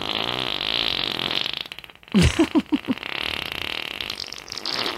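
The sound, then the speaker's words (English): A loud fart rips out as a quick series of four or five sputtering low pulses, standing out sharply against a steady background hiss. “F-A-R-T. Yeah. Fart, yeah.”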